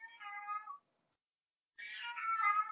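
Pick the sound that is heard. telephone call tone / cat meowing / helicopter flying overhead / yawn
cat meowing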